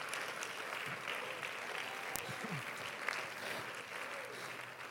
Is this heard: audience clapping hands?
yes